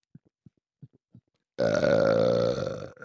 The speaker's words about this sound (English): I don't know if you heard that burp. I did it off mic. Let me do it on mic. Hold on. Swallow air.